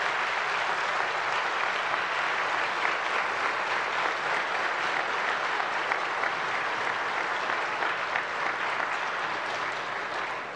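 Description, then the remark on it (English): A large gathering gives sustained applause to graduating high school seniors. The clapping is a dense, steady wash that holds at an even level for about ten seconds, then eases slightly at the end. “Let's give all these amazing graduates a round of applause.”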